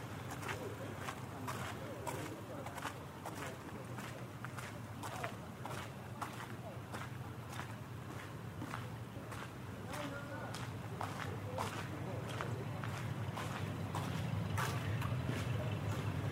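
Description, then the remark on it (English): Steady footsteps crunch along an outdoor canal towpath at an even walking pace, heading towards a tunnel, distinct, with a low rumbling drone in the background that grows slightly louder toward the end. “I'm on the canal path now and walking towards the tunnel.”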